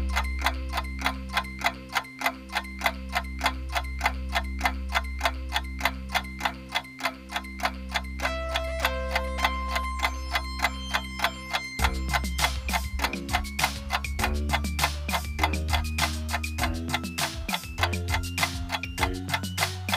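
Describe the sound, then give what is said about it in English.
A 30-second countdown timer ticks in a fast, steady rhythm over a droning musical bed that grows busier halfway through, with no voices. “We're going to give you 30 seconds to think about your answers. The clock starts now!”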